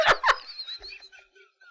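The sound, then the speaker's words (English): Two sharp, explosive sneezes in quick succession, followed by a fading, squeaky, higher-pitched trailing sound. “Bless you”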